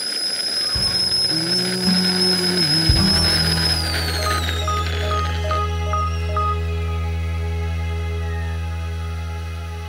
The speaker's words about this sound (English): I'm sitting in a noisy cafe. I can hear staff at the counter taking orders, the barista shouting out coffees, the other customers. The voices aren't background.